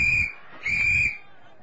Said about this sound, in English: He blew his whistle again.